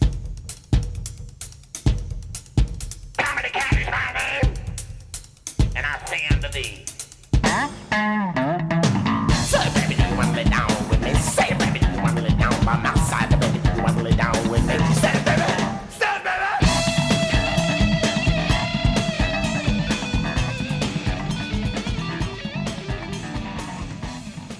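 A rock song with a heavy, prominent bass line and fast, aggressive guitar playing. It opens with choppy, punchy hits, then erupts into a loud, dense full-band section that stays driving to the end.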